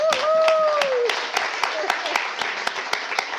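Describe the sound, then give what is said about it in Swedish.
Sparse clapping from a small group, sharp claps landing in an uneven rhythm, while a voice gives a rising and falling whoop near the start. “Så det applåderar jag ut.”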